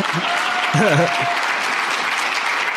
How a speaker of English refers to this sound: And by the way, when I said we could not have done it without Families USA and without you, that is an applause line for you.